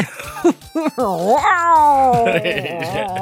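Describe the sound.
A person's voice imitates a strange cat-bear growl: a few short yowling bursts, then a long, loud, wavering cry that swoops up and slowly sags, with no words spoken.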